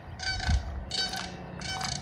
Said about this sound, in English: It's not a goose, that's a crane. It's hard to see.